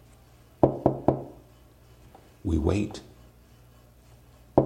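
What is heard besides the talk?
knocking on a door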